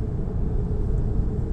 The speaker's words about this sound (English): I'm back in the traffic. I love traffic.